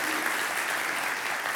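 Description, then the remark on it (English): An audience claps steadily, a dense, even wash of many hands applauding at once that holds at the same loudness without letting up. “Yeah, you better clap, all right?”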